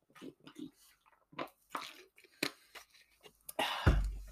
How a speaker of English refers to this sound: I'm just going to take a swig of water here, getting a bit dry.